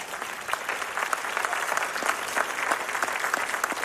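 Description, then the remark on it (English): About ten people clapping steadily for several seconds, a dense patter of overlapping hand claps at moderate volume with no voices over it. “That was like 10 people clapping.”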